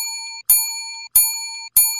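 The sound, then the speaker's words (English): A bright bell dings three times in steady succession, each strike sharp and ringing with a sustained metallic tone that decays until the next hit, with no talking. “So Grifka, my Grifka bell wasn't working.”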